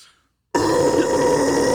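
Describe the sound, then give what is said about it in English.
After a brief silence, a person lets out a loud, sustained, rough growl imitation in a low, gravelly voice that holds steady to the end, as part of a weekly growl-off. “And we're going to start it off, but we're going to do a growl off for the listeners.”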